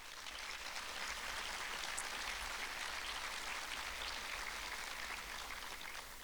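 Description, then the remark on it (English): A crowd applauds the president and board members of Vetlanta as they rise, in Atlanta; a dense wash of many hands clapping at an even level for several seconds, with no voices standing out. “If you would, please rise so we can applaud y'all as Vetlanta and amazing things happening in Atlanta.”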